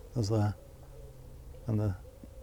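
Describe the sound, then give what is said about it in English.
Pigeons coo twice, a pair of low, throaty calls about a second and a half apart, moderately loud over a quiet, steady background. “Even that's as banal as the pigeons cooing, it's got a sort of its own enchantment.”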